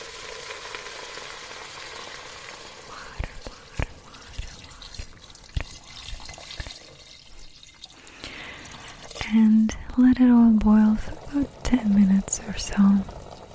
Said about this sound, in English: Now we'll add about a liter of water.